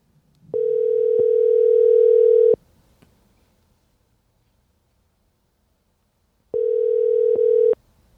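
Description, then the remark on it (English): Two long ringback tones of an outgoing phone call to parents who do not answer, each a steady electronic hum lasting about two seconds, separated by a four-second silence. Loud and clear, with no one talking. “They're only child and they can't answer the phone.”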